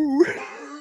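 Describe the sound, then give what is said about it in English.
A person's voice imitates the Hulk Hogan dog bark from TNA, a strange, strangled dog bark: one short, hoarse, wailing yelp that swells briefly and trails off into a breathy, raspy tail, fairly loud. “The help dog barks like that.”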